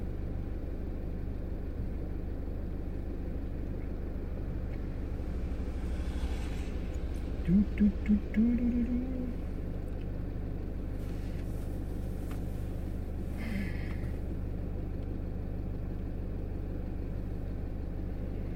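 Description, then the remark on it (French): A car engine runs steadily the whole time, a continuous low rumble, with a brief higher-pitched warble rising over it partway through. “C'est bel et bien mon moteur qui tourne, tu vois.”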